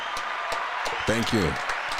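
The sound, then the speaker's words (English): A crowd applauds the show's host, clapping steadily in a dense, crackling wash of applause that runs the whole time, with a short voiced shout or cheer rising over it partway through. “6 years sober this March. Round of applause for me.”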